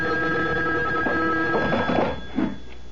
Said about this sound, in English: A phone. At this hour? I'll get it. You stay here.